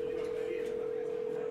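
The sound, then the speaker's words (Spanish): A steady, unbroken telephone dial tone hums from a public phone handset at the end of a bar, at moderate volume, with faint background murmur and no clear button presses. “se dirige al teléfono público que se encuentra al final de la barra.”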